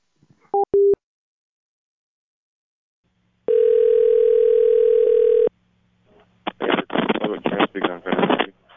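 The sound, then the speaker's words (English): A steady telephone dial tone hums for about two seconds after a couple of short beeps, then cuts off as garbled, speech-like chatter follows. “Oh, your phone is broken.”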